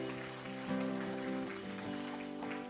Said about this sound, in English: Let's first just give the Lord a clap offering as we finish the message.